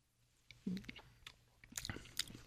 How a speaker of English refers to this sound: You get the aroma of the whiskey. Take a sip.